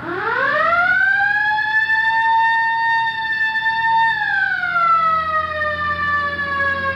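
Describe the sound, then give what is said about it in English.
A loud police car siren wails as officers pursue a bus, climbing quickly in pitch, holding a steady high tone, then sliding back down, with a low engine-like rumble underneath and no voices. “All right, hit the siren.”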